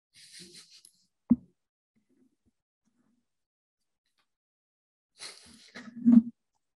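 Three dogs bark excitedly in a short burst near the end as someone comes home, after a single sharp thud and some faint rustling earlier. No one speaks.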